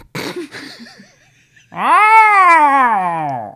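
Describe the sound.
After a moment of soft rustling and faint chirps, a cat lets out one long, loud, drawn-out meow that rises and then slowly falls.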